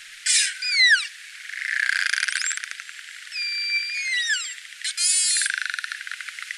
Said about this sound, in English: It sounded like one of those things that kids blow in. A trumpet? Yeah, like a trumpet or something, And this is not one of those burst pulses. So this is just one of the many other sounds that narwhals make.